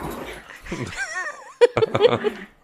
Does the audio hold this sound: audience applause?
no